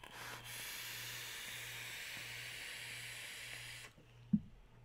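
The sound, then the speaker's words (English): A vape coil fires on a Bonza mechanical mod with a deep, steady crackling sizzle that lasts about three and a half seconds, then cuts off, followed by a single soft knock. “And this Bonza on this Bonza mech gives me the deep crackle that I desire.”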